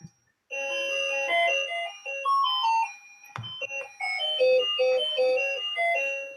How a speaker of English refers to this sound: This is going to go off for a minute. It's our cuckoo clock.